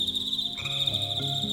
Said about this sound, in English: I was surprised to hear so many peepers this time of the year. That's not typical for mid-July in this neck of the woods, anyway. I was wondering what was going on. Wow, they were really tuning up today.